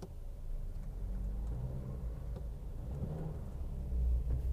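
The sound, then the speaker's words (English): A deep, steady engine rumble of heavy trucks rolling along 6th Street in downtown Los Angeles, the low drone filling the scene and swelling a bit louder near the end as one passes. “Man, there's too many fucking trucks on this street.”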